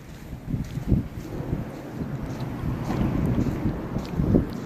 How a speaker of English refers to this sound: I'm just listening to the sounds of the car under the bridge.